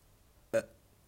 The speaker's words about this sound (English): That was a nice burp, I think. Firm. Didn't really have a taste, which I appreciate. Sometimes burps have, like, well, it depends, you know.